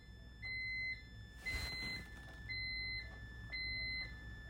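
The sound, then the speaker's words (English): A hospital bassinet monitor alarm, set off by something left on the bassinet, sounds in loud, high electronic beeping bursts that repeat about once a second, with a brief rustling thump partway through and no talking. “And then they had left something on the bassinet that it started alarming and I could not get up.”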